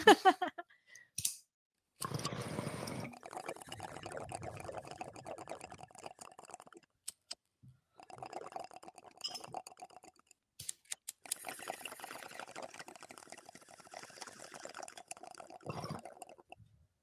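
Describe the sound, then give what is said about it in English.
Someone takes a few hits of cannabis: a couple of lighter clicks, then three long, crackling and bubbling inhales separated by brief pauses, with no talking. “Taking a couple hits of that. It's getting real smoky in here.”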